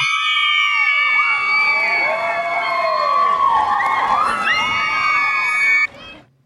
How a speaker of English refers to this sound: Okay, so apparently we're cheering that, and that's a good thing.